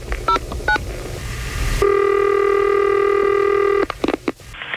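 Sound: telephone dialing and ringing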